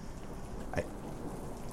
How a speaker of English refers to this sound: Is that rain? Oh, there's the rain for the farmers. There's the rain.